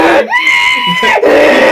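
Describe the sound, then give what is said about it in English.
A person does a loud, close-up imitation of a donkey's bray: a single strained, drawn-out cry that jumps up in pitch, holds for about a second, then drops off. “Oh, how scary is the scene when he turns into a donkey, though? You know, it's like”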